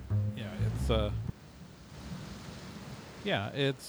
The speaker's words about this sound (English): At some point, it starts raining, and you can hear the echo of raindrops on the steel roof of the building, and see them.